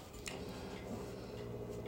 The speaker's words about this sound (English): I think that's this little water heater behind me. Yeah, making hot water.